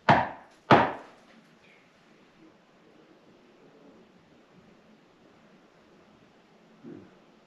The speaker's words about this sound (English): I'm going to knock 2 times. Can you repeat that knock?